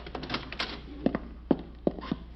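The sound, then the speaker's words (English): Several hollow knocks on an apartment door along a hall in an apartment house, fairly loud, in an uneven sequence of five raps with short pauses between them, over a faint background hiss. “Nobody's there. Sounds hollow.”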